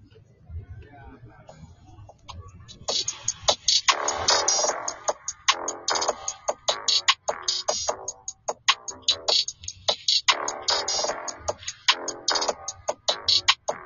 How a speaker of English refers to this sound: This is just sketchy, like, beat making.